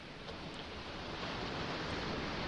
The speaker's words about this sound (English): So quick, where are we right now? You hear the waves crashing at the shore. Or is it the waves crashing at the shore?